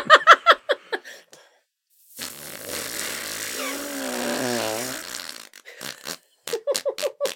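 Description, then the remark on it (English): Arm and hand fart noises: a long, buzzy, wavering squelch lasting about three seconds, framed by quick clusters of short sputtering bursts before and after. “Oh, musical arm farts. Can you do it with your sweater on?”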